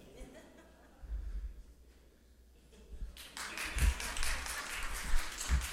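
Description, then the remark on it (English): After a few seconds of quiet murmuring, a small group of parents starts clapping in a quick, uneven patter that continues to the end, with a couple of dull thumps and faint chuckles mixed in. “Of course your parents clap.”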